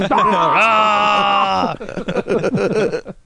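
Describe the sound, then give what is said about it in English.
A person lets out a loud, sustained Klingon death scream, a howling cry that rises in pitch and holds for about a second and a half before breaking off into chatter. “Every time my scenes get cut, we have to do the Klingon scenes get cut scream of death.”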